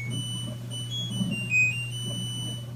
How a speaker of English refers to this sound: Obviously, we've come a long way from those harsh beeps and buzzes.